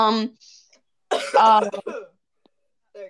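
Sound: cough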